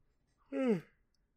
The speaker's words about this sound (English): Sorry, I yawned.